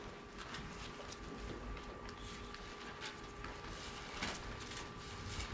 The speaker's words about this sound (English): I hear pages turning. Galatians chapter 4, verse 4.